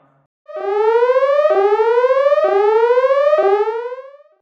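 A loud, piercing alarm siren wails alone in four rapid rising sweeps, each climbing in pitch for about a second before snapping back down and starting again.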